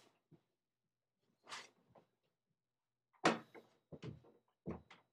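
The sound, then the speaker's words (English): A door swings and shuts with a firm thud, followed by a few quick clicks and knocks of the latch and handle, with no talking. “Oh, crap, the door's open. One sec.”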